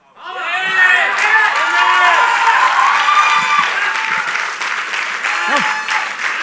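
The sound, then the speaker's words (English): A crowd claps steadily and loudly while many voices cheer and whoop over it, a sustained wave of applause lasting the whole stretch without letting up. “Every time you shake your head, nod your head, put your hand up, clap, whatever you do, you're dying to yourself.”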